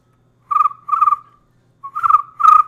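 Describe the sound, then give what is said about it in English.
A person imitates cricket chirping with four fairly loud trilling bursts, grouped as two pairs separated by a short pause, with no talking. “we're gonna start off with … doing cricket noises”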